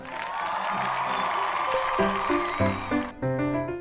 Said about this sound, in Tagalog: Dahil dyan, bibigyan kita ng malutong na palakpak.